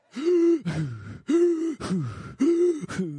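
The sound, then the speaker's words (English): A single voice imitates a church audience breathing heavily after singing two lines of a worship song: three loud, voiced gasping inhales, each followed by a quick, lower panting exhale, in a steady rhythm with no other speech. “Y'all got through about two lines of that first song, and most of you were breathing heavy.”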